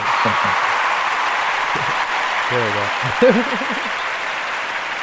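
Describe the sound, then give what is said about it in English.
An applause sound effect played as cheers for WTOP: a steady wash of crowd applause, dense and hissy, holding an even loudness throughout while a man's voice speaks a few short words over it. “All right, so that's a little cheers for WTOP.”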